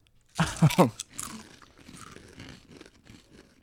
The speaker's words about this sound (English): We do a 3-2-1 countdown, and we all crunch at the same time. On one, okay? On one? So when I say 3-2-1, and then crunch.